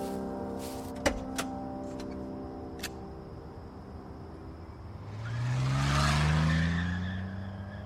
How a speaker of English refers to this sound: Did you see that? See what? The car that sped by. It had a broken windshield.